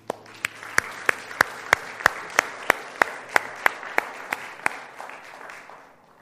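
A church audience applauds together as a clap offering to the Savior, sharp unison claps landing in a steady rhythm over a dense wash of scattered clapping, loud, tapering off near the end.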